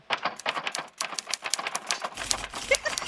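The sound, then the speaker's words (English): Rapid, busy clacking of manual typewriter keys on an old Smith Corona, a dense run of sharp mechanical strikes, with a low rumble joining near the end. “The secretary pool on the old Smith Corona.”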